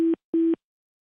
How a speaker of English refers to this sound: Possibly not. Uh-oh. Heard that beep, beep, beep sound.